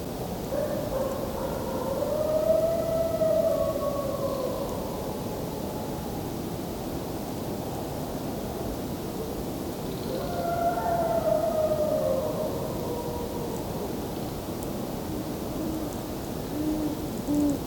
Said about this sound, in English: Here go the coyotes.